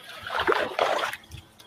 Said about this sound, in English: So it like does like a whopper plopper kind of splashing. Let's see how much water this thing is pushing. This little tiny bait right here pushes a ton of water for being so small. It's only like 5.5 inches.